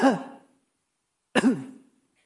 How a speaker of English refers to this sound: There's a cough.